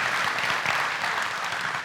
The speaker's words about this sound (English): Can we give the band a big round of applause and all the singers? It's just amazing.